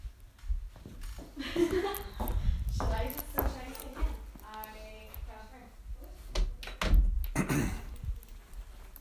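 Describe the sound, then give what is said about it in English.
A door swings shut with a solid thunk amid scattered knocks and shuffling movement, while voices murmur and talk through the background. “Close your door too.”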